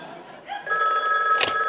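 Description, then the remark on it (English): A telephone rings with a bright, sustained electronic trill that starts abruptly and holds steady at moderate loudness, with a brief sharper burst near the end. “That's the Comedy Central phone. Probably ringing to congratulate me.”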